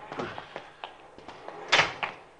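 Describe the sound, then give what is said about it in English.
The door of a Cadillac is forced open in a nearly empty parking lot in the dark, a little after 10:30: a string of sharp rattling clunks and knocks, ending in one louder, harsher jolt, with no voices. “He's forcing the door.”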